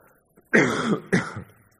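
Two harsh throat-clearing coughs from a preacher during a sermon in the night air, in quick succession, each a broad raspy burst lasting about half a second, with near silence before and after.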